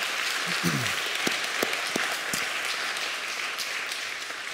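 A crowd applauds the event's organizers steadily, a dense wash of many hands clapping at once with a few sharper individual claps standing out, sustained evenly throughout with no talking.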